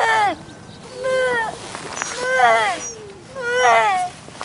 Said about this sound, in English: Now, the grey seal pup makes a sound not unlike that of a human baby. Have a listen.